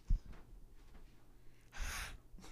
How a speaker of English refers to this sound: She's just breathing on the microphone.